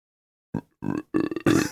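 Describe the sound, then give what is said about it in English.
A person makes a string of low, guttural croaking sounds, an impression of a Cardiff frog: four rough bursts that grow louder and longer, with brief gaps between them. “I told you I thought that was an impression of the Cardiff frog.”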